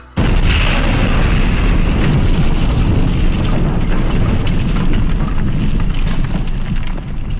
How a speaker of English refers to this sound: Loud explosions and eruptions rock the launch pad, with one explosion sending a chunk of wall hurtling toward Kurt's head, knocking him unconscious while the others stumble to the ground.